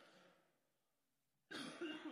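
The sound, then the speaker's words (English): After a brief hush, a speaker who has walked away from the microphone coughs, a muffled, rough burst that sounds somewhat removed, following the fading tail of an earlier noise. “Now I can walk away and cough, and it doesn't.”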